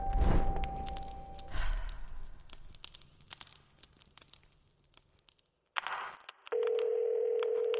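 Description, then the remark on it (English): Rustling and crinkling handling noises, a brief burst of clatter, then a steady, continuous telephone dial tone from a phone placed in a tube, starting abruptly and humming loud until the end. “They put a phone in the tube.”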